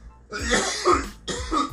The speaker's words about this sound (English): Listen, you giving me Roni vibes over here and keep coughing like that.